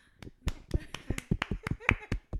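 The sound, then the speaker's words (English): A handful of audience members who watch the Bravo show Southern Charm clap sparsely, about a dozen sharp, irregular claps spread over a couple of seconds, fairly quiet and uneven rather than a full round of applause. “Clap if you watch Southern Charm.”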